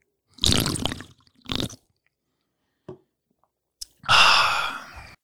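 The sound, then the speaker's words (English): Someone drinks a cold drink: a couple of noisy slurping sips, a small click, then a loud, breathy, satisfied exhale at the end. “This is cold. I'm going to drink it.”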